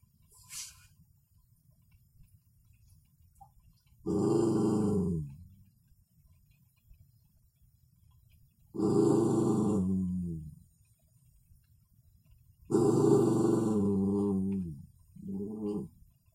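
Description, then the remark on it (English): A dog gives a series of little excited growls, four fairly loud grumbling bursts spaced a few seconds apart, the last one short, over a quiet low background hum. The dog is excited at being ignored and nudges its owner. “Not annoyed, but he gets excited about being ignored, so he'll start nudging me, and then you'll hear his little growl at some point in a second go.”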